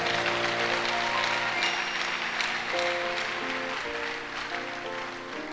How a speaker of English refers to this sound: Hallelujah. Oh, I don't like your hand clap at all.